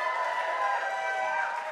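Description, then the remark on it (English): A large audience claps steadily and fairly loudly throughout, a dense continuous wash of applause with some cheering voices mixed in, and no speech over it. “Like, you don't clap for Akron.”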